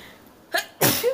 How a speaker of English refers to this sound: I have to sneeze again. The sneezes, they always happen.